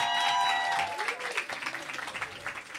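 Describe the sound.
A burst of welcoming applause from a group, dense clapping that starts loud and gradually thins into scattered claps, with some voices and cheers mixed in early on.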